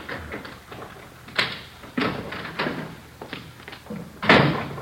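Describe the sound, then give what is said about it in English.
A kitchen door at the back of an apartment is handled at night: a series of wooden clunks and rattles as it opens and shuts, ending in a louder thud, with no voices. “Somebody's coming around back, Joe. Yeah. Kitchen door.”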